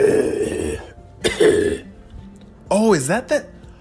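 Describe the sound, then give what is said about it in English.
A voice playing a fire-breathing dragon makes two rough, raspy bursts of throat clearing and coughing, fairly loud, followed by a short groaning, wavering vocal sound. “Oh, I have a cough sometimes, and us fire-breathing dragons, when we breathe the fire, it makes our throats a little rough.”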